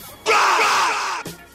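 A man's loud, raspy scream, sampled and inserted into a song in place of the word 'rock', bursts in suddenly and holds for about a second with a strained, harmonic-rich tone, then cuts off abruptly as another brief sound begins.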